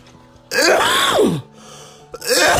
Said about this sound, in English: Count how many times I cough and you get a cookie.